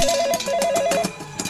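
A telephone rings with a bright, warbling electronic tone, pulsing rapidly and steadily, loud and clear with no voices.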